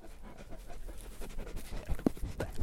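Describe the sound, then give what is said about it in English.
A long-coated white sheep-guarding dog pants rapidly right up against the microphone, nearly biting it, its breaths loud and rhythmic with a few sharper huffs and low rumbles of handling noise, no one speaking. “He just nearly bit the end of my microphone off.”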